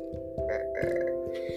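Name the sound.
burp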